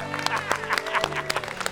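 An audience claps and cheers together as a person comes up out of the water, with scattered sharp hand claps over a steady wash of excited voices and a sustained musical tone underneath, fairly loud.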